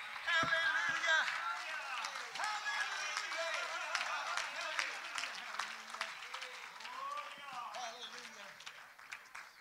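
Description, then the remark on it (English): An audience claps together in a dense, steady burst of applause lasting several seconds, with voices calling out over the clapping. “Can we clap our hands together?”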